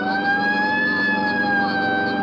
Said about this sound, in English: Right, I'll hit the siren. You get the light.